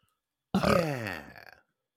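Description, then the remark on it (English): A single loud burp lasting about a second, starting abruptly with a deep guttural rumble that slowly trails off into silence. “Hey, got a little bit of a burp.”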